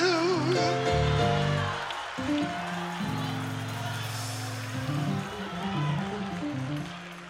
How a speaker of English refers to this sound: Come on, give her another rousing applause.